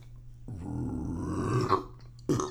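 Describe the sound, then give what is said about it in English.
A long, low, rumbling seltzer water burp rolls out for about two seconds, followed by a short breathy exhale, in the evening in Arizona. “It is a seltzer water burp.”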